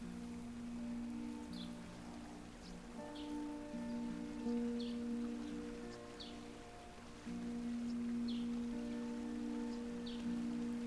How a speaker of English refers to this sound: A few meters away, you can hear the rushing of a stream.